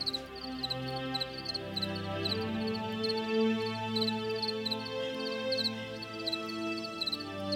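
Crickets living inside a home chirp in steady, rapid pulses against a dense nighttime chorus, with low droning croaks underneath, all at a moderate, even level and no voices.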